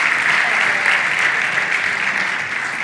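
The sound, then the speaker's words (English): Steady, dense applause from an audience at a service as people are being seated, thanking the sound and camera crew: a continuous wash of many hands clapping at an even level throughout, with no voices standing out. “Listen, as you're being seated, would you give these guys a round of applause?”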